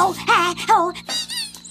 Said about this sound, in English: Ooh, a squeaky toy! That's a squeaky toy!